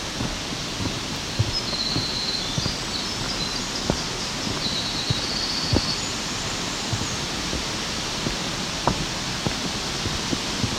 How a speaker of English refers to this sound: Aspen, very loud trees in the wind, doesn't matter how much wind, it's going to sound like a lot.